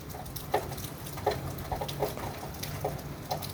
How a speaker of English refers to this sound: It's raining. Rain for me is God's way to calm me down.